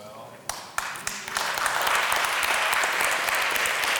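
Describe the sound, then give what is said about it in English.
A few scattered claps open, then a crowd's applause swells into steady, dense clapping that holds at full strength to the end, with no talking over it. “That gets less claps because I know it's awkward.”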